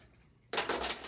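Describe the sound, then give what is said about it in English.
After a brief hush, glasses clink and clatter as drinks are poured, a burst of bright, ringing taps and rattles lasting under a second, with no one talking. “Let me see you guys' glass. Sir, pour take it.”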